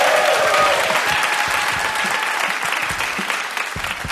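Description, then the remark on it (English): A live audience applauds at the end of a lightning round, steady dense clapping that stays loud and sustained throughout before easing slightly toward the end. “That is it for the lightning round. Give a round of applause.”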